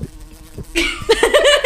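bee buzzing

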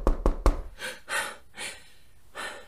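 knocking on a door

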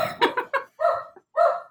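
dogs barking

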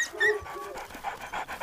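dog panting

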